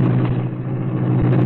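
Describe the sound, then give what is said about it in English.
The engine of the Black Beauty, the Green Hornet's sleek, streamlined car, roars into life, a loud, deep rumble with a continuous mechanical drone that holds even for the whole moment, with no voices. “The great car roared into life.”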